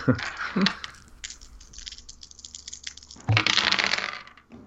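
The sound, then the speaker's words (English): Dice are rolled for an athletics roll (TN 8) and clatter across a hard tabletop: a few sharp clicks at first, then a longer tumbling rattle that settles, coming up six. Fairly loud, with faint voices in the background. “Ah, gosh, stupid dice.”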